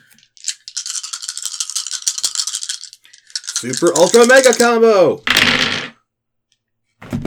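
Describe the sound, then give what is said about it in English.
A handful of dice rattles steadily for a few seconds, then a voice shouts excitedly before the dice clatter loudly onto a surface in one short burst, rolled for a series of attack rolls. “You see all the dice I'm getting.”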